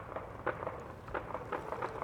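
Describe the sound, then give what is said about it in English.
Several real gunshots pop in an uneven volley during filming at the edge of Hunter's Point, sharp muffled cracks spaced a fraction of a second apart over a quiet background with no talking. “These are real gunshots.”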